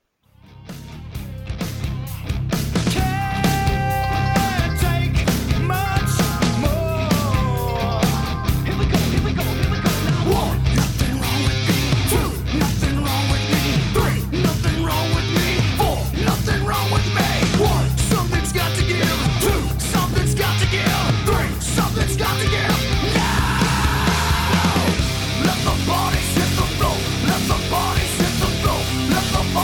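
A loud heavy metal song with dense distorted guitars and pounding, driving drums, kicking in after a brief start and staying at full intensity throughout, with no talking over it.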